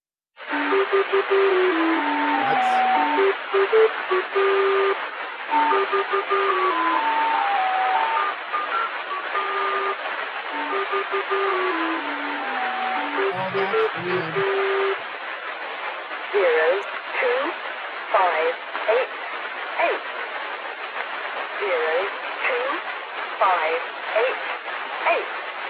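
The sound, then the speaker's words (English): A shortwave broadcast from the Gong Number Station: a thin, band-limited radio signal plays a repeating stepped chime-like tone melody, then a steady voice reads on through constant static hiss. “if you go into the chat and click on the second link I sent, which is known as the Gong Number Station, and I'd like you to play that.”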